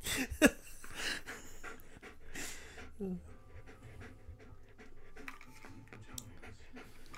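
A dog named Onyx pants heavily and steadily, quick rhythmic breaths continuing throughout, with a brief sharp noise near the start and faint sounds in the background.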